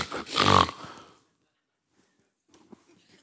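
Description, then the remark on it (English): A horse snorts once, a loud, breathy, rumbling blast about a second long, then silence broken only by a few faint soft noises. “And the word there, indignation, was used commonly in the day of the life of the Lord Jesus to refer to the snorting of a horse.”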